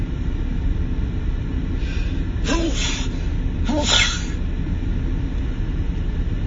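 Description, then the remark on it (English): Two sharp, breathy sneezes about a second apart, each a short burst of hiss with a voiced edge, made away from the microphone, heard over a constant low rumbling background. No one speaks. “I don't want to sneeze into the mic.”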